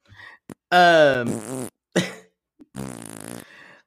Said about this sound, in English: Farting.